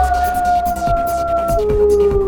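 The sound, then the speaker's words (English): Wolves howl in long, sustained, overlapping tones, one dropping lower partway through, fairly loud, with a few dull thuds underneath. “Clever little beasts, those wolves. They're chasing us into a dead end.”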